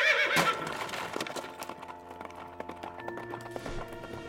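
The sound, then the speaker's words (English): A horse whinnies loudly at the start, followed by a rapid flurry of hoofbeats as the startled horse bolts away, the sharp strikes continuing steadily until the end. “My horse had surely bolted, startled by God knows what.”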